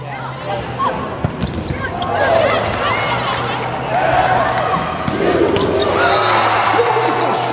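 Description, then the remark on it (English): A volleyball is spiked and bounces, with a handful of sharp, echoing smacks scattered among steady background chatter from people. “Volleyball spikes are a perfect example of Newton's law.”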